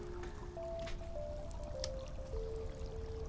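A river flowing through a cave rushes steadily and continuously at a moderate level, its current growing faster, with soft sustained musical tones drifting underneath and no voices.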